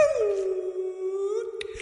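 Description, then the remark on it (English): A person imitates a humpback whale call with their voice: a single long, mournful moan that slides downward and then holds steady for nearly two seconds. It is clear, with a brief click near the end. “I'm going to pretend I'm a humpback whale.”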